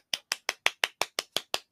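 A single person's golf clap congratulating Jon Rahm after the Masters: ten light, crisp claps in a steady, even rhythm, each a short bright snap that fades quickly, with no voices.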